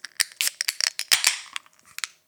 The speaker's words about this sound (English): Okay. Let's grab the can. Let's grab that glass and let's open her up.